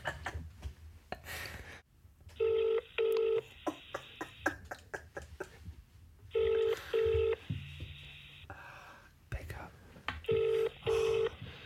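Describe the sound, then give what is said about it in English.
A phone line rings out from the caller's end in a British double-ring pattern, three paired rings spaced a few seconds apart, clear and steady over faint background noise. “Keep it ringing. It's the most important phone call I've ever made.”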